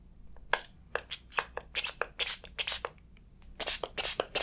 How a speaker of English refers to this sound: So, what I'm gonna do is just add a little water to your face and I'm just going to wipe the scrub off. Gonna spray really quick, just